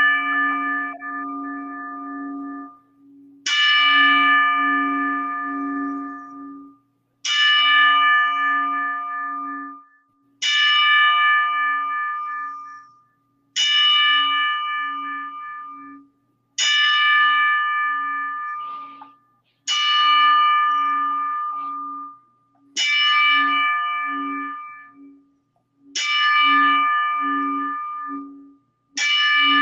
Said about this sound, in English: I hope everybody could hear it. The 10 bell salute for him.